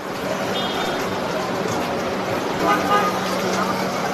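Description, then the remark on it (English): A busy crowd of hundreds of motorists and people at a petrol station in Bujumbura, Burundi, rushing to refuel after a lorry unloaded fuel, while a police officer tries to bring order, fills the scene with steady, loud noise, as car horns toot briefly now and then over a jumble of engines and voices. “Police officer was trying to bring order on hundreds of motorists who are rushing to retank after a lorry unloaded fuel.”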